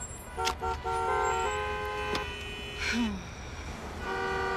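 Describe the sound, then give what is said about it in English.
Several car horns honk in overlapping blasts of different pitches and lengths, some short toots and some long held notes, over a steady low rumble of heavy street traffic, heard from inside a cab stuck in the traffic. “Oh, traffic's shit. She's terrible. Trapped in this cab.”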